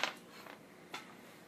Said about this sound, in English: Not having much luck with dice rolls today.